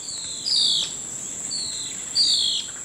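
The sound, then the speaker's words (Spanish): A blue-faced ocellated antbird, clinging to a thin plant stem while waiting to catch flying insects, gives three clear, descending whistled notes at a steady pace over a constant high-pitched hum of insects in the background. “Aferrado al delgado tallo de una planta por arriba de la batalla, el hormiguero ocelado de cara azul espera que los insectos voladores abandonen sus escondites y luego los caza en picada.”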